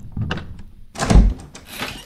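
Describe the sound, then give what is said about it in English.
A front door is unlocked and pulled open: a quick click of the latch, then a heavy thunk as the door swings, followed by a brief scraping rustle. No one speaks. “Rebecca unlocked and pulled back the front door.”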